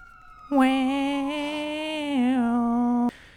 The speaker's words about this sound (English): There it is. There's a siren.